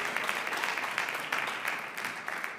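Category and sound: crowd, audience clapping hands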